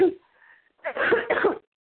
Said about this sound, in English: Is that you? Coughing up a lung? No, I think that's baby.